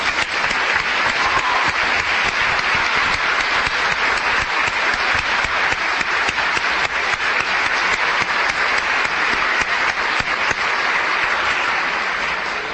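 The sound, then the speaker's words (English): A crowd applauds steadily for over twelve seconds for all the prize winners of a competition, a dense, even wash of many hands clapping at a constant loud level with no voices rising above it. “Let me ask you to join in one final round of applause for all of our winners.”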